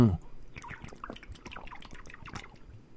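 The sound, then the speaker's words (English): Someone drinks spring water: a run of wet sips, slurps and small liquid gurgles in irregular succession, with a short contented murmur at the start. “And I'm getting ready to drink my spring water. Take a deep listen.”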